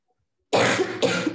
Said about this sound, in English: Sorry, I have a bad cough.